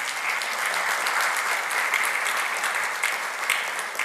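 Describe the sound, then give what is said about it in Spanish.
Loud, sustained applause from a church audience, given for the Lord at the preacher's call during a sermon: a dense wash of many hands clapping steadily for about four seconds with no pauses and no talking over it. “Si lo quieres, dale un aplauso fuerte, Señor.”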